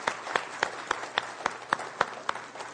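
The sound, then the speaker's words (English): A church audience applauds to honor those who served in the United States military: a dense, steady patter of many hands, with one set of crisp claps standing out in an even rhythm of about four per second, at a moderate level with no talking. “Could we give a round of applause to those who have served?”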